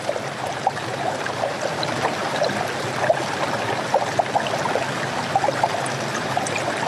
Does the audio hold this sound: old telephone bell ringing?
no